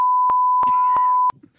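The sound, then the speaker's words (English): A loud, steady censor beep from a device that cuts off the microphone holds one flat pitch for over a second, with a muffled voice faintly audible beneath it, then cuts off abruptly into quiet room noise. “Because what it does is like a sensor, and obviously you heard that beep.”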